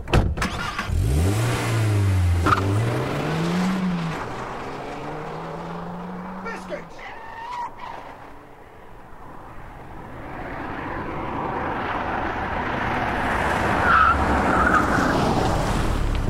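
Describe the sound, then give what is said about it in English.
A car engine revs loudly, its pitch climbing and dipping a couple of times, then the vehicle roars away into a steady rushing drone of road noise. “Yes, and now use me car. It's a lot faster.”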